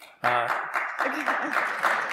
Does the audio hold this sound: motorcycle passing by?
no